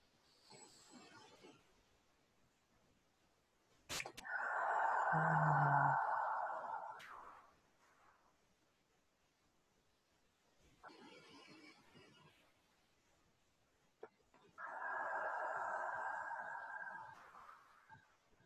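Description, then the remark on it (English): Slow, deep breaths drawn in through the nose and pushed out through the mouth, two long loud airy exhales separated by quieter inhales, with no talking in between. “We'll take three breaths like that together.”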